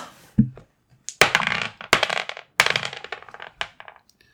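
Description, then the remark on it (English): Dice clatter and tumble across a hard surface in several quick bursts, sharp rattling impacts fading out after each throw, fairly loud with no talking. “Let's roll dice really quick.”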